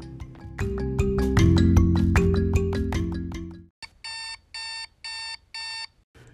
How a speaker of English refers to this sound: The day of the flight began with me getting woken up by my alarm.